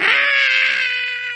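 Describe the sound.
A single loud, high-pitched scream of pain, sustained for over a second and trailing off slightly at the end, with no other sounds around it; a real, not acted, scream after being struck very hard.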